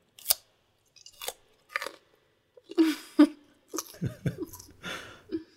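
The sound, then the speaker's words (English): Someone chews a raw carrot right up against the microphone, with loud, wet crunches arriving in irregular bursts and short quiet gaps between bites. “Okay, eat carrot.”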